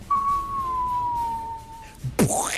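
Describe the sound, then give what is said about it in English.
A voice imitates a glob of hot bean falling: a long, thin whistle slowly sliding down in pitch for about two seconds, then a short, noisy burst like a mouth-made splat on impact. “can you make the noise of something falling? I can't do that whistle sound.”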